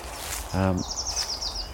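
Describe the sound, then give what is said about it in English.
Spring birdsong among lime trees and hawthorn just coming into leaf: a high, quick trill of about half a dozen repeated chirping notes, fairly soft, following a brief low voice-like murmur. “And there's glorious birdsong here.”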